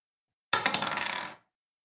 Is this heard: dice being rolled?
yes